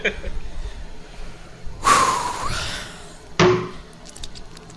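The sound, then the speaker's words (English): Someone gulps down a bottle holding 24 ounces of water: a long, breathy rush of swallowing, then a short sharp gasp-like burst. Faint low background murmur, and no clear talking. “All right, I've got 24 ounces of water left, and it says here on the program we have to finish what we're drinking, so I'm about to slam this.”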